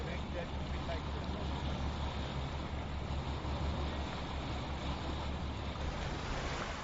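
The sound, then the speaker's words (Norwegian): Waves wash steadily onto a long sandy beach on the south side of Listerlandet in good weather, a continuous broad hiss of surf over a deep, rumbling undertone, with no clear breaks between swells and some wind noise mixed in. “Fra Loshavn dreger vi videre i Vesterveg og møter nesten uendelige sandstrender på sydsiden av Listerlandet.”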